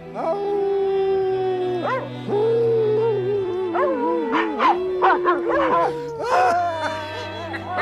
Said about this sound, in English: He's telling the dogs to howl at the moon, again, tying in the wolf aspect mm-hmm. that keeps recurring.